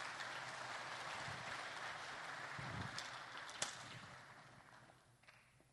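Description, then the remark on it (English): An audience claps for two participating gentlemen in a steady, dense round of applause that holds for several seconds, with a few sharper claps standing out before it fades away near the end. No one speaks. “Give them a round of applause, will you?”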